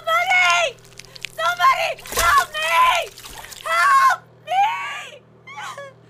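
Water splashes and sloshes in a bathtub in a couple of sharp bursts, mixed in with repeated high, wailing screams and whimpering cries.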